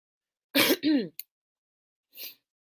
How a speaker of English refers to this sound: And I'm not sick. I can clear my throat. Y'all can tell I'm not sick, and y'all already know.